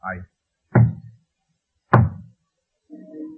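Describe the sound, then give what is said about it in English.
Three heavy, hollow knocks on a wooden door at midnight as a visitor arrives, spaced unevenly, followed by a brief low murmur. “He knocks on the door.”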